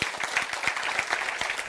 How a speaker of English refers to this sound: And if you don't, I'm waiting while you clap your hands.